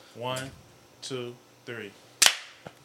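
human body sound, group hand clap

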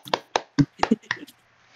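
crowd, applause

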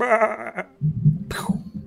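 animal, sheep bleating

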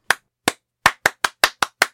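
human body sound, hand clapping rhythm

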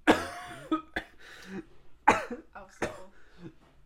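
human body sound, cough

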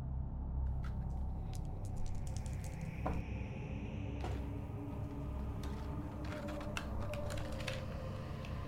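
household object, many dice rolling

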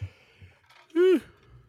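human body sound, yawn

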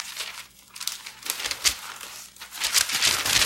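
household object, paper rustling and crinkling

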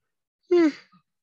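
human body sound, person yawning

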